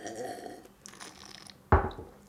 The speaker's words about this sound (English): Pause for a quick sip of Guinness. Nourishment.